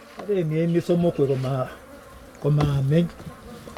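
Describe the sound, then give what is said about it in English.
Honeybees buzzing around beehives in several droning bursts, a steady low hum that swells and fades, with brief quiet gaps between passes. “It is said to be one of the land of honey, land with beehives.”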